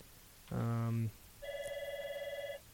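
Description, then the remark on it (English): A phone rings for an incoming call: a brief buzzy tone, then a steady, slightly warbling electronic ring lasting about a second, clear, with no one talking. “we're getting a phone call, so I'll stall for a little while.”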